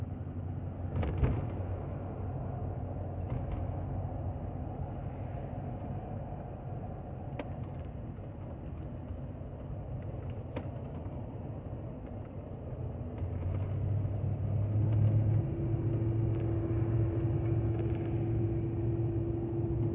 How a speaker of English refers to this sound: Well, that was me almost getting into a car accident because that car perfectly blended in with the road. Damn. Everyone's safe.